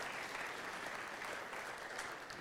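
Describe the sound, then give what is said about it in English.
An audience claps steadily, giving the elders a round of applause: a dense, even wash of many hands with no pauses or voices standing out, holding at a consistent moderate loudness throughout. “So I give you an elders a round of applause.”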